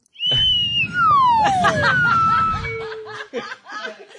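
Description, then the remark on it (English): A slide whistle plays a few gliding tones, mostly sliding downward in pitch, while people laugh loudly underneath and the laughter trails off at the end. “Told you I brought a slide whistle.”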